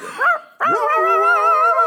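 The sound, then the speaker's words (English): A dog lets out a short yelp, then a long, wavering, drawn-out vocal note, loud, with no talking around it. “Yes, I've never sung with... a bark.”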